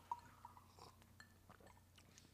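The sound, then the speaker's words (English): A couple of quick, light glass clinks ring out at the start as glasses of Ghost tequila are touched together in a toast, followed by faint clatter and soft liquid-like sounds. “Cheers, yeah, everyone. Cheers, salut.”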